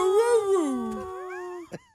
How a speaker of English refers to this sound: This woman taught her dog to say, I love you.